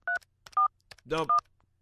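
Three short electronic keypad tones beep in an irregular sequence as someone on an already answered phone call keeps mashing the buttons, each a steady two-pitch chirp, with a brief burst of garbled line noise between them over a faint phone-line hum.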